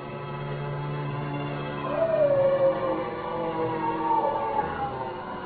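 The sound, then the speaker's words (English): A large dog howls in long, wavering cries, the pitch sliding up and down over a steady low drone, fairly loud, with no voices. “They've gone for the dog.”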